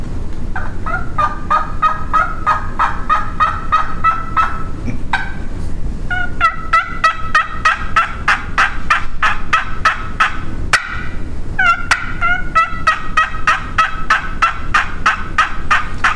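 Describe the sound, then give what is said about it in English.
A friction turkey call imitates a hen with long runs of rhythmic, raspy yelps, fairly loud. The runs come in three bursts separated by brief pauses, with no talking. “you got a friction call in your hand”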